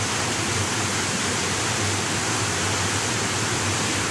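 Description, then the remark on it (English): A steady, dense roar of rushing water from Victoria Falls, a very large waterfall, loud and unbroken throughout, with a deep rumble underneath and a bright hiss on top, and no voices. “This is Victoria Falls.”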